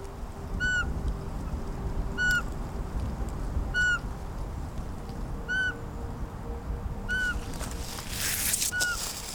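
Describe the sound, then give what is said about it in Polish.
A male Eurasian pygmy owl, about 400 metres away in a forest at dusk, gives a regular series of single whistled hoots, about six calls spaced evenly, sounding distant over a low rumble of woodland background noise. “Tam daleko. Jakieś 400 metrów odzywa się samiec suweczki.”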